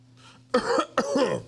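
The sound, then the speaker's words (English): Two loud coughs in quick succession, each a rough, raspy burst, the second slightly longer and throatier, with a faint low hum underneath and no talking; someone coughing to cover eating candy in church. “Why does everybody cough in church?”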